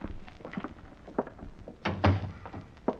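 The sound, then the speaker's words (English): A motel room door thuds shut with one heavy, dull knock about two-thirds of the way through, set against faint shuffling and small clicks of movement. “Then as I opened the door, I realized I had company right behind me.”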